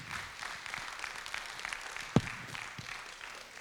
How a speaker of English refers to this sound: Come on, can we give God a good round of applause today?